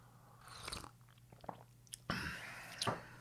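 Someone chewing breakfast: a few crisp, crunchy bites and moist mouth clicks spread unevenly over a few seconds, moderately loud over a faint steady hum, with no talking.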